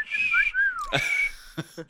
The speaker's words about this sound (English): Whistle, whistle, whistle.